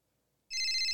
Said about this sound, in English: Nope, phone's ringing. Hold on.